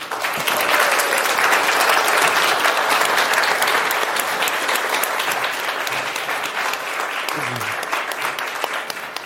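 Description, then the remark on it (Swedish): Sustained audience applause welcoming the evening's musicians, a dense, steady wash of many hands clapping at a fairly loud level that holds for the whole stretch, tapering only slightly toward the end. “Och en applåd även för kvällens förstärkning”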